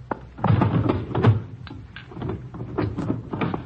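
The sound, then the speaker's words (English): A wooden drawer scrapes and slides open as something is put into it, with a few knocking thuds and rattles of its contents over a few seconds; no one speaks. “I heard you putting something in a drawer when we knocked on the door.”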